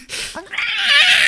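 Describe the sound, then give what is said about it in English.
A single drawn-out meow from Gimme, a cat, high and whiny, rising and holding for about a second. Clear, with no talking over it. “Speaking of cats, if you can hear, you can hear Gimme in the background.”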